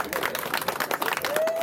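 A small audience at a social at Cityside Lounge in Tampa breaks into steady, dense applause after a class, many hands clapping together, with a brief thin whistle rising near the end.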